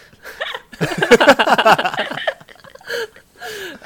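A man in a coughing fit: a dense run of harsh, rasping coughs, followed by a few separate strained coughs and throat-clearing sounds after short pauses.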